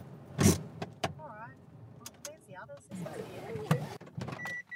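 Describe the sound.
Car doors thump shut a few times around seven parked cars as 25 people get out at a protest blockade camp in central Queensland, Australia, with shuffling, a window motor whirring and indistinct voices murmuring in the background.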